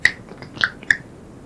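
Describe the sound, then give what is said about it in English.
Three crisp finger snaps ring out, the first alone and the other two following in quicker succession, made during a guided exercise, with no voices and only a faint background hush between them. “What I'd like you to do is to snap your fingers and shrink the size of that space down so it just includes you sitting in the chair, your body sitting in the chair.”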